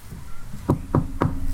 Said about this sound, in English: We have knocked on the door. Okay, as you knock on the door, you can hear sort of clambering coming from within and some large footsteps approaching the door.